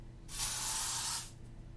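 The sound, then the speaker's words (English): A single burst of fizzy, pressurized spraying in a video game as bunny blood is splashed on an altar, like carbonated liquid hissing out, holds steady for about a second before cutting off over a faint low background hum. “That sounded like it worked. Bunny blood is pressurized. Fizzy. Carbonated?”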